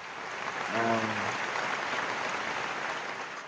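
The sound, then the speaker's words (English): A crowd claps together in a dense, steady wash of applause, while a brief voice or tone rises out of the noise early on and then fades. “Let's use the clap.”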